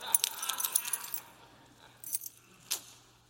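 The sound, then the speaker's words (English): A bunch of car keys jangles, a busy metallic rattle for about a second, then a couple of shorter clinks after a pause. There is no talking. “Here's the car keys.”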